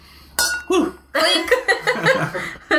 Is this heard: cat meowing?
no